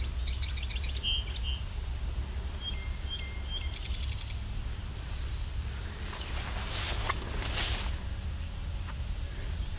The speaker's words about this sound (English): Indigo bunting.